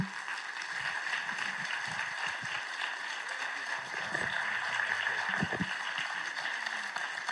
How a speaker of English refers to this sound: Would you stand and applaud as one of our missionaries come to the platform this morning?